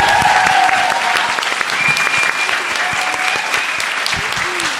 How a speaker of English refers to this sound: And can I have a round of applause, please, for all the food and for all of my guests.